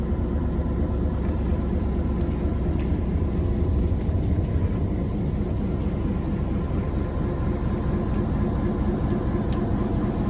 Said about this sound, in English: This is the train. Riding on today.